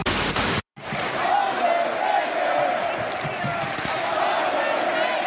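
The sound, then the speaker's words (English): A large arena crowd in Atlanta roars continuously, giving a mixed reaction to faces and heels: a dense wash of cheering and shouting with some mixed booing tones, steady and loud throughout after a brief burst of noise and a short gap at the start. “Obviously, it's a mixed reaction here in Atlanta for faces and heels. We don't know who we're cheering.”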